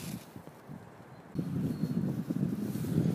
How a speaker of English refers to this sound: So it's a bit of a windy day today. It's a gorgeous morning, really bright, clear skies, hardly a cloud in it. And it's one of those crisp winter days, which is always really nice to go for a stroll in.